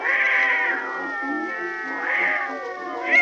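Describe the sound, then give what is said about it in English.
A Maltese cat named Tiny caterwauls in long, wavering yowls that rise and fall in pitch, loud, running continuously for a few seconds with no talking. “Why, that's Tiny, my beautiful little Maltese cat.”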